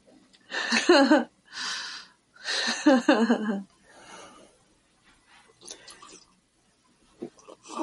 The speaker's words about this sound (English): Yeah, it was a good loud sip.